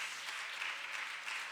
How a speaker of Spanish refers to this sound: Deme un fuerte aplauso al Señor con el corazón, hermano.